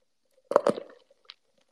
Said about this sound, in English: Take a sip of my Dunkin' Donuts iced coffee.